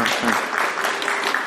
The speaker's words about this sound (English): Can I just announce that every week and you'll keep clapping?